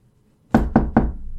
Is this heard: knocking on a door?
yes